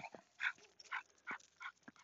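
animal, dog barking

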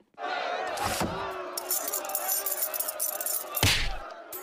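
household object, keys jingling

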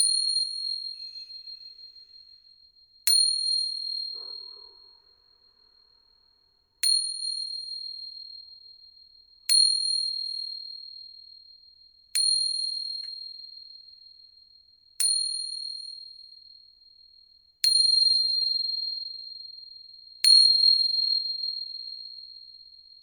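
ringing chimes

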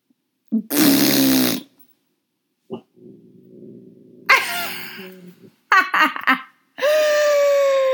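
human body sound, loud fart noise

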